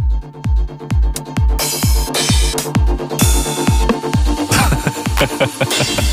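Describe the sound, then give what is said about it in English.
A TR-909 drum machine beat pounds out a steady four-on-the-floor kick with ticking hi-hats and bright, crashing accents every couple of bars, loud and upfront with no voices. “It's the sounds from the 909 drum machine that basically started this whole scene.”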